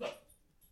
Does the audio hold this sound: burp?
no